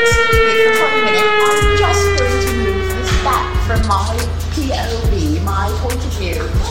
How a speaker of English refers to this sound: This guy right here is on a siren. Siren, okay?